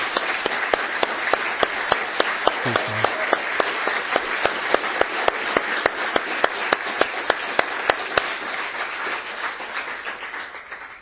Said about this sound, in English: So if we can give a round of applause, guys.